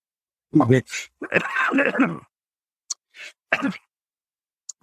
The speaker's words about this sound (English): So in many ways, having this kind of Zoom meeting and being terribly embarrassed by coughing is a good demonstration of the fallibility of a lot of futurism.